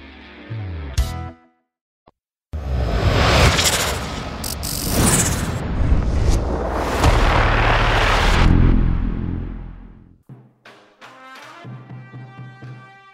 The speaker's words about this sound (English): Look at the NIL House band. They are moving. They're grooving. They sound great. They are from Dunwoody High School right here in Georgia. Fighting Wildcats. They're incredible.